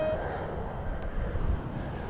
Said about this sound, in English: The reason that sounded weird is because the plane taking off next to me, as you no doubt heard, was just about the loudest goddamn.